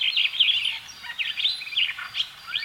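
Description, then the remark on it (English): Starlings chatter and whistle in a busy, continuous stream of overlapping high chirps and squeaky notes, steady in loudness, with no voices. “Some of the most beautiful birds in the world are starlings.”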